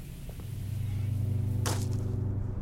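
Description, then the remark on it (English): A sharp, bright crack of a rock, tossed by a kid at other rocks, striking another rock, followed by a faint second tick, cutting through a steady low engine-like rumble and hum. “Some bored kid tossing rocks. What are you throwing them at? Other rocks, I guess.”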